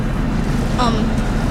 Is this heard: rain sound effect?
no